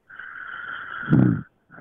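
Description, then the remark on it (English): A person snoring, a whistling nasal tone on the inhale that turns into a brief rough rumble, then a short pause before the next snore begins. No one speaks. “Oh, the snoring has changed.”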